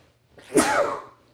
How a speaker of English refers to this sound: I hate sneezing. I usually sneeze in twos and threes. So if another one comes, God bless you. You were warned.